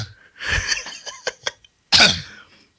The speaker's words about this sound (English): I made the schoolboy error of breathing in before I slurped. So did I. That's why I'm choking to death now.